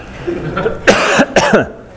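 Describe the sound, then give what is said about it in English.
Two harsh coughs in quick succession, loud and breathy, with a short pause between them and no talking around them. “Help, you can answer while I cough.”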